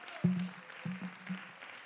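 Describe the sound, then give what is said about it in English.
A group claps their hands unto the Lord in an irregular patter, with a few sharper claps standing out over a low steady hum. “Let's clap our hands unto the Lord.”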